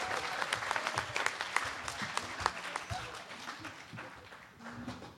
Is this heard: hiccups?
no